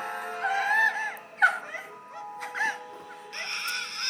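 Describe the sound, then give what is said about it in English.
A woman's faint, high-pitched whimpers as she gives birth, a few short strained whines separated by brief pauses, quiet, with no talking. “She just gave birth? Like, that was how she gave birth? Luke. A little whimper?”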